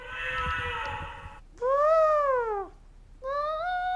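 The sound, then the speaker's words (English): A voice imitates hungry monkeys squeaking while reading a zoo sounds book aloud: a breathy rustle, then a long, high, whiny squeal that bends up and falls away, followed by a second squeal that starts the same way and is cut off. “The hungry monkeys squeak as they nibble on tasty fruits and nuts.”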